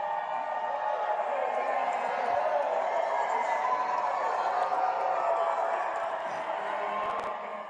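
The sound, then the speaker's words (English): A large crowd lining both sides of a path roars and cheers steadily for several seconds as UVA basketball players step off buses in a triumphant celebration, a dense wall of overlapping voices and shouts holding at a constant loud level throughout. “Here's just a little clip of that action that went down, the celebration as they exited in triumph.”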